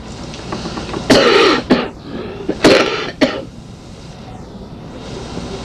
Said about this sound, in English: Got a little cough. It's because it's winter time. You're supposed to have a cold in the winter.